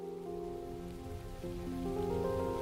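Heavy rain pours steadily against the windshield of a mid-sized sedan being driven, a dense, continuous patter, with a sustained low tonal drone running underneath throughout.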